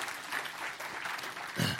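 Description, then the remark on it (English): A crowd applauds steadily, many hands clapping in a dense, crackling wash that holds at an even level for a couple of seconds, with a brief low murmur rising near the end. “Now go ahead and clap, everybody.”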